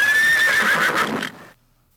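A horse lets out one loud whinny, a high quavering cry that wavers and falls over about a second and a half before cutting to silence.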